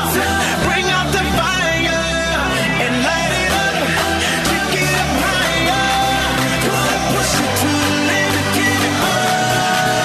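A loud pop song plays steadily throughout as a radio bumper on the sports station 97.5 1280 The Zone, with a driving beat, deep bass line and dense layered melody, filling the whole stretch without any talking over it.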